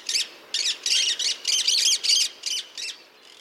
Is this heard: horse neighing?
no